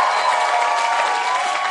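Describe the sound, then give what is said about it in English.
An audience claps together in a dense, steady wash of applause, many hands blending into a continuous crackling roar at an even, fairly loud level throughout. “Look, the way I've preached and the way you are clapping, I can't compare the two.”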